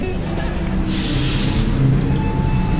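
The engine of the 140 Magic Bus to Didsbury rumbles low and steady while a sharp pneumatic hiss of air brakes or doors bursts out for under a second, then fades back into the idling drone.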